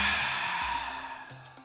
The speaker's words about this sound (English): lead us in breathing exercises. Pay attention and tell us who needs our help.